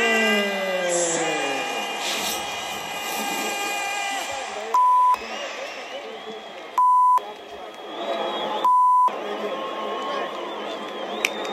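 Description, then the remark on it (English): Three loud, steady electronic beeps, each about half a second long and evenly spaced, cut sharply through a noisy background of crowd murmur and chatter at a fight event just after a TKO stoppage. “I promise you, those are not my beeps.”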